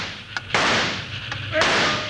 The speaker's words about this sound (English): Catch them before they can get off the top of that dam. Right. Hey, they're shooting at us. Keep down. I'll try a little lead on them.